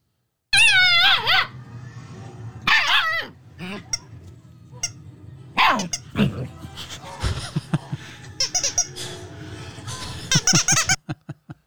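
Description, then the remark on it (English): A female puppy, heard in a video, lets out high, shrill squeaks and yips in several short bursts, some wavering up and down in pitch, with quieter snuffles and rustling between them over a low background hum. “So then this is actually a video of her.”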